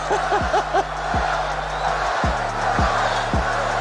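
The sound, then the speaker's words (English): A large arena crowd at a slam dunk contest roars steadily while a rhythmic chant of "Spud" for Spud Webb rises out of the noise, a short two-beat shout repeated again and again at an even pace. “Let's see what happens as the crowd chants Spud.”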